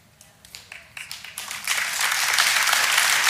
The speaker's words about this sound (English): Thank you, Mom, for getting the clapping started. I always love it when Mom gets the clapping started, right?